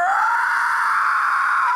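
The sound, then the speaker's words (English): A person imitates a battle roar with one loud, sustained cry. It holds a steady, fairly high pitch for almost two seconds with no other sounds behind it. “what's the battle roar that you have?”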